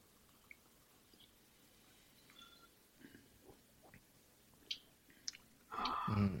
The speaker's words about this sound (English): All right, let's go ahead and take a sip of it.